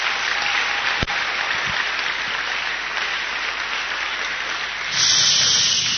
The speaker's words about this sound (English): This one, too, when I say it, clap. Is that clear?